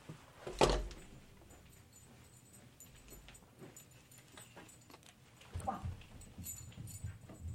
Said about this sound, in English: And there's a dog. Hey, Ruger, go upstairs, buddy. Cute dog. Huh. Go. One second. I'm going to take him upstairs.